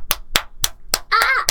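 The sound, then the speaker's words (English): Five sharp, loud hand claps, spaced unevenly, imitating the slaps heard before entering a sex dungeon, with a short drawn-out vocal cry sounding between the fourth and fifth clap. “I mean, you just hear like a cacophony of slaps.”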